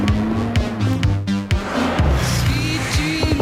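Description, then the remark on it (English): A Honda car engine revs loudly and changes pitch as the car races along in a chase, with tires squealing in sharp, repeated bursts. No voices are heard. “Now he's suddenly behind the wheel of a Honda.”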